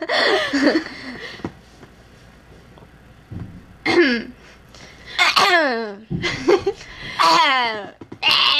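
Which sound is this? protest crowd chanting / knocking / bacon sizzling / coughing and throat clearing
coughing and throat clearing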